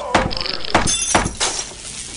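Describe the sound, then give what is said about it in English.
A fire axe smashes a tape deck in several heavy, sharp blows, each a loud crunching crack with brittle clattering and tinkling debris, roughly half a second apart before the noise fades out. “Look, Mr. Bell, it's coming from that tape deck over there. I've got to make them stop. Well, there is a fire axe next to it.”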